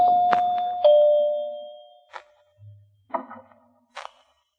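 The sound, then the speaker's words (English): A doorbell rings with a clear two-note ding-dong chime, each tone ringing out and slowly fading, followed by a few short, dull knocks and thumps. “Now, where's that doorbell?”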